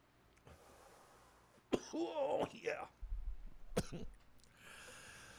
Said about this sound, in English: This has got to be entertaining for the listener. Oh, yeah. They love to hear the coughing and shit.